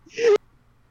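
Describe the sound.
A single short sneeze: a quick voiced intake rising into a sharp, breathy burst that cuts off abruptly, followed by quiet.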